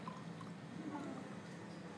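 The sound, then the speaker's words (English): Champagne is poured to top up a drink in a flute, with a steady, soft fizzing hiss and faint liquid gurgle lasting throughout, fairly quiet and even in level, with no talking over it. “And then you're going to top it with some champagne.”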